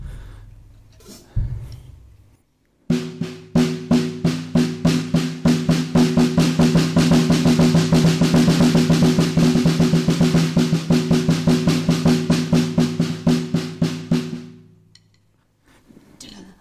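A drummer demonstrates a paradiddle drill: a fast, even stream of stick strokes with regularly recurring accents, played alone for about twelve seconds, starting abruptly and tapering off at the end.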